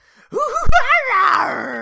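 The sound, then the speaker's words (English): A person vocally imitates the cry of an armored owlbear rearing up on its hind legs, a piercing bear-owl cacophony: a single drawn-out, wavering howl that rises into a strained, piercing screech and then trails off in a rough, groaning fade. “You see him jump through the flames, and he turns to face where he jumped, and he rears up on his hind legs and lets out a piercing bear owl cacophony sound.”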